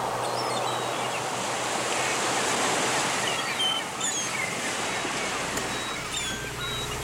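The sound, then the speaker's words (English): A steady, wide roar of ocean surf washes along the shore, with a few faint, high bird chirps drifting over it. No one speaks. “I better take a good look at the ocean, huh?”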